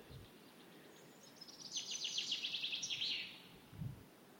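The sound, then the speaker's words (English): A male chaffinch's bright, rapid song trill rings out in an English woodland in early spring, a descending run of chirpy notes lasting about two seconds, with soft rustling and low thumps in the background. “Sounds of an English woodland in early spring.”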